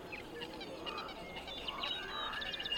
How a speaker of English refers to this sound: There's only one sound that makes it through the filter. Birdsong. Birdsong makes it through.